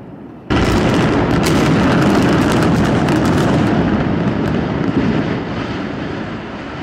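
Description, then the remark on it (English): Controlled demolition explosive charges detonate: a sudden loud blast gives way to a rapid, crackling string of explosive bangs over a heavy roar, then a long rumbling wash that slowly fades. “Go watch some actual controlled demolition videos, and you'll see that the precision timing of the explosions is virtually perfect, down to milliseconds.”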